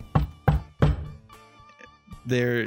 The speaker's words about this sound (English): Get a knock on the first door.